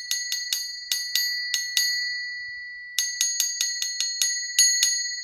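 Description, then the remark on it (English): An ice cream truck bell rings on one bright note, struck in quick rhythmic bursts with a short pause in the middle, clear with no voices; the bell is rung to attract customers. “Look, you attract your customers by ringing this bell on which you can play a wide range of songs as long as they only have one note.”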